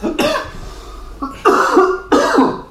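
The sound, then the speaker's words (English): Three loud, raspy coughs in a row: a drawn-out first hack, then two sharp, harsh bursts with a short pause between, from someone whose water went down the wrong way. No talking. “Water's gone down the wrong way.”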